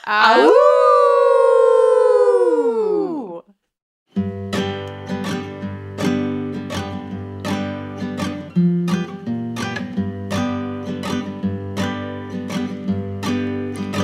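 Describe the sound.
Several people let out a loud, sustained wolf-like howl that swells and then falls away after a few seconds, followed by a beat of silence and then rhythmic music with steady percussive hits.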